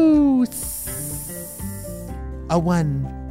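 Ten snakes slither and hiss in a loud, steady burst lasting over a second, set among tonal musical sounds and a sliding, voice-like melody before and after.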